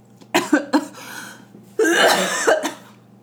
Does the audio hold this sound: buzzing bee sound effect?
no